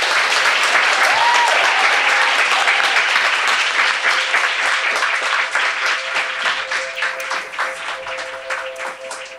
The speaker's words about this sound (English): Let's give a big round of applause to Arianna.